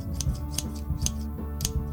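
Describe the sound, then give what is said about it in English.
Scissors snip through a t-shirt's fabric in four crisp cuts spaced roughly half a second apart, cutting it into a crop top, with a steady low musical hum underneath. “Where are my scissors? Okay, if I can just get this to be a straight line, then...”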